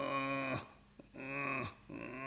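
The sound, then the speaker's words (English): A bull elk moans in answer to a cow elk call, long, low, droning calls, three drawn-out groans with a short gap between each, clear with no voices. “And he's just moaning.”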